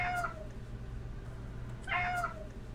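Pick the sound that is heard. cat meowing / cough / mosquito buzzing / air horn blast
cat meowing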